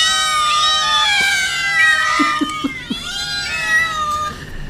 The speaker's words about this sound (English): So many. Just 50 fucking cats just waiting to eat your corpse as soon as you go down.